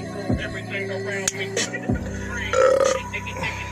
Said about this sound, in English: When I'm happy, I burp.